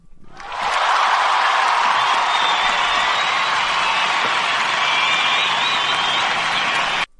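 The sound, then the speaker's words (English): A burst of loud, sustained applause and cheering swells in within the first second and holds steady, dense and crowd-like, with high whoops riding on top, before cutting off abruptly. “All right, where's my applause?”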